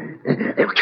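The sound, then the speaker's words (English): A sneeze of Carmichael, a polar bear with a bad cold, voiced by a person: a short, rough, growling build-up that ends in a loud, breathy hissing burst, lasting under a second with no other talk. “Gesundheit.”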